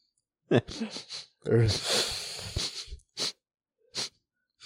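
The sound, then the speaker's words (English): A person mimics deep sniffing breaths, like dogs sniffing each other, with voiced, snorting inhales, followed by three short, sharp sniffs spaced apart. Fairly loud, with a brief vocal sound at the start. “Sniffing each other's butts. How deep is that breath? Sniff circle.”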